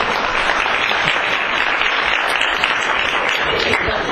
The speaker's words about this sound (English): I should believe that this clapping is for me, isn't it?